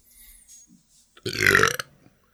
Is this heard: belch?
yes